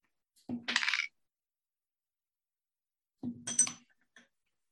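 Dice clatter and tumble across a hard tabletop in two separate short bursts, fairly loud, with about two seconds of silence between them and no talking.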